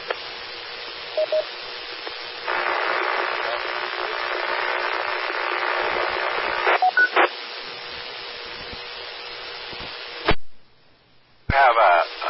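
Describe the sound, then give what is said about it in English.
A steady, hum-like noise fills a station's radio transmission for several seconds, band-limited and buzzing, with a garbled voice buried underneath before the carrier drops and briefly returns. “Noise on your station. It's almost a hum, but I cannot understand you through the noise.”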